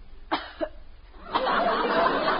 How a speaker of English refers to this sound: if you start that phony coughing again...